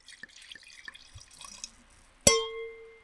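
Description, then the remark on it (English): Wine trickles and splashes steadily into a glass, then a single bright glass clink rings out and fades with a lingering tone. No one speaks. “Wow, a Ching and ching, a pour.”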